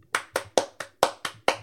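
A quick run of seven sharp hand claps at a steady, brisk rhythm, crisp, like one or two people clapping briefly with no talking.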